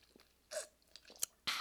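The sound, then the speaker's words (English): Quiet sipping of iced coffee, with a few short slurping bursts and faint crunchy, ice-like clicks spread over a second or two. No one speaks. “Let me have another sip of my iced coffee.”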